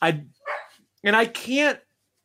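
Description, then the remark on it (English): A dog barks four times, loud and sharp, the first two short and clipped, the last two longer and more drawn out, with no talking. “my dog is chiming in.”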